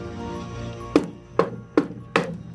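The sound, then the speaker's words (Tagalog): Four firm knocks on a wooden door, evenly spaced in a steady rhythm, each a sharp hollow thud over a low, quiet background hum. “Ilang ulit silang kumatok pero nananatiling walang sagot.”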